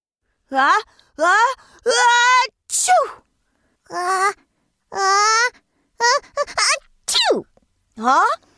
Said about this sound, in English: Sparky is sneezing too?